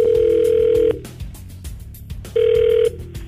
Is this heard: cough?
no